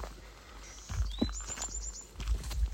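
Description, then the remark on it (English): Faint, high birdcalls in a forest: a thin rising whistle followed by a quick run of about six short chirps, heard over soft, crunching footsteps on a gravelly hiking trail through a tunnel of trees and low rumble. “And there are birds talking to each other right now.”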